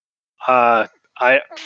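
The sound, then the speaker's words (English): A voice imitates a dying man's gasping: three strained, throaty groaning breaths, the first long and the next two shorter, with nothing else around them. “Better yet, speaker in the car with the gasping in the background.”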